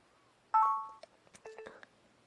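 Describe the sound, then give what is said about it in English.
A recording device gives two electronic beeps signalling please wait while a recording is saved after the enter key is pressed: a longer, steady tone that fades out, then a shorter, lower-pitched tone, with a few soft clicks between them. No one speaks. “And that beeping means please wait.”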